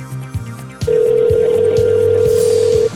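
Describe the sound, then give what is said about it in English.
A malfunctioning phone goes berserk: a steady, loud electronic telephone tone holds for about two seconds over a rhythmic low pulsing hum, preceded by brief clicks. “My phone went completely berserk.”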